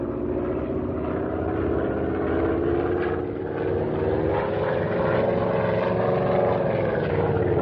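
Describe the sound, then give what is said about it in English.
A propeller plane roars past in a low buzzing dive out of the sky at those below, its loud, steady engine drone rising slightly in pitch and then sagging back down, with no voices. “This ought to be far enough away to start in for a buzz. You watch them start to run when they see us coming out of the sky at them.”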